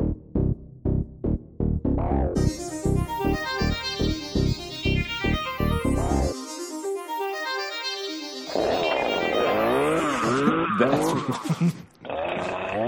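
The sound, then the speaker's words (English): A landscaper's small two-stroke chainsaw engine with a faulty choke sputters and gurgles in uneven pulses, briefly cuts out, then revs up into a loud, rough, wavering whine with no voices present. “That's a chainsaw, my friend. Listen to the gurgling.”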